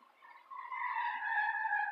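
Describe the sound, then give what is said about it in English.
A high, steady tire squeal swells in and holds loud for a couple of seconds as a car skids past, speeding through a stop sign, with no voices. “I hope the audio got picked up that car that, like, just fucking passed through a stop sign.”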